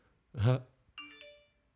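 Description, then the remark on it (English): A phone notification chime for incoming emails plays two quick bright tones that ring out and fade, right after a short burst of voice. “I hate having my notifications on. Like, dude, shut up. That's not anyone. It's just, like, stupid emails.”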